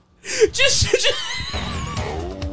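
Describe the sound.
Rapid, panicked hyperventilating from racing driver Charles Leclerc after crashing out of the French Grand Prix comes through a compressed team-radio channel: a quick run of strained, voiced gasps and cries, then ragged breathing that continues at the mic.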